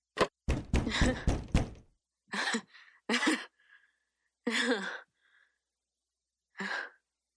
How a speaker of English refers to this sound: She stares at herself on the live stream. She closes the laptop.